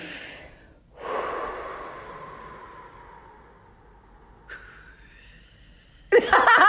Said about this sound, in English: It's really important to breathe out twice as long as you are breathing in. When people are having anxiety, they think they need to take these big, deep breaths, but you actually need to breathe out twice as long.